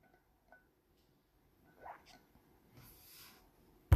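A quiet sip of water: a soft slurp, then a breathy exhale after swallowing, with a sharp click at the very end. No one speaks.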